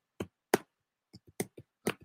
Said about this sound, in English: What are you clicking on? I just tapped on my finger on the computer. Oh, okay. Well, it's making like a loud noise.